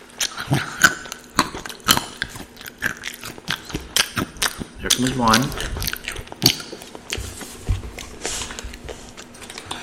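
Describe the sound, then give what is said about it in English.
Crunchy chewing of macadamia nuts, with sharp irregular cracks and crunches repeating throughout, and a person briefly speaking partway through. “We're going to do some macadamia nut chewing.”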